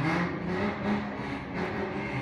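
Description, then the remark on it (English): A car engine revs in a loud, sustained roar with a low rumbling drone, swelling slightly a couple of times over about two seconds, with no talking. “Okay, someone just revved their engine.”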